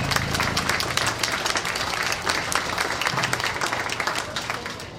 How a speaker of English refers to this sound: Let's give all these young YouTubers a round of applause.